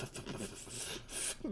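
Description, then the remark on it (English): Pages being flipped, a quick run of dry papery rustles and swishes lasting about a second and a half, soft but steady, with no voices. “That's the page flipping sound, you know?”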